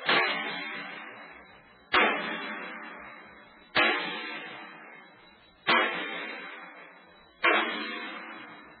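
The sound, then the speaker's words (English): Five heavy sledgehammer blows tighten the wind bolts that hold a metal door shut for a watertight seal, at a slow, steady pace, each loud clang ringing out and fading before the next. No voices are heard. “They have to be tightened by hammering with the sledge.”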